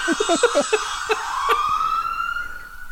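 Ambulance sirens from ambulances arriving from all over wail with a steady, sliding tone that swells and holds, preceded by a quick run of choppy, rhythmic bursts at the start.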